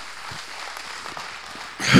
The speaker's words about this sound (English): My God, come on, church, let's honor Him. Come on, give the Lord a mighty hand clap of praise.